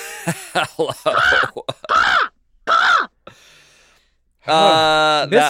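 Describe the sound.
A person imitates a crow, letting out a string of harsh, nasal caws in short bursts, ending with a longer, strained squawk, loud.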